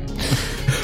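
A man yawns close to the microphone, a short breathy exhale with a low voiced groan rising briefly near the middle and again toward the end.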